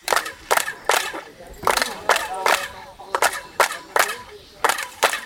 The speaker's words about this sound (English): Every year, over a million people visit the ruins, and as tours reach the famous main pyramid, the guides stand a few meters back and ask everyone to start clapping their hands. When you clap your hands, what you get is you get a chirping sound.